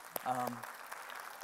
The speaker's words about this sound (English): So can we just let our round of applause be a warm thank you?